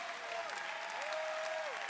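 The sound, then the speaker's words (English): An audience claps steadily in a dense, continuous wash of hand claps, with a few whoops and shouts rising above it, including a sustained cheer that slides up and holds. “You better clap your hands and shout.”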